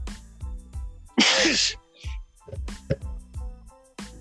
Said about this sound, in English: Bless you. Thank you. Why was that sneeze so well timed?